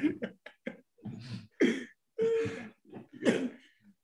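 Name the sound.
coughing and throat clearing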